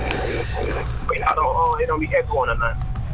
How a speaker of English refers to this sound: No, I just got it on my car radio. Oh, okay. No wonder I can hear us. I can hear it. Turn it down a little bit, because if not, I'm not going to be able to hear you.